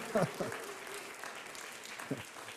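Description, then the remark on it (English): An audience claps steadily throughout, a dense, even patter of many hands, with a couple of brief voices or cheers rising above it. “Now, if this were a movie like Spider-Man or Rocky 1, 2, 7, or 19, at this point, you would all break out in applause.”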